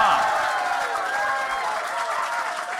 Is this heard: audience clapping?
yes